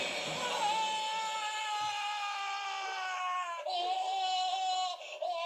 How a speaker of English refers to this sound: That's a funny scream. It is.